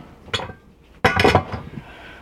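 A large air fryer basket, big enough to hold a small chicken, is set down on a counter: a brief light clatter, then a louder, sharper knock with a short rattling ring that fades quickly. No one speaks.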